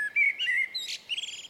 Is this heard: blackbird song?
yes